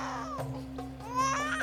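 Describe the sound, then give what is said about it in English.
An infant in a basket in the reeds by a river cries in continuous, wavering wails that rise and fall in pitch, steady in loudness, over a low constant hum with no talking. “You there, see if you can find the source of that crying.”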